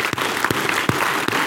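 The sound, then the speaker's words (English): A crowd applauds Old Glory, the American flag, with a dense wash of clapping, punctuated by a few sharper, heavier beats landing at a steady rhythm, with no voices over it. “Can we give Old Glory a round of applause?”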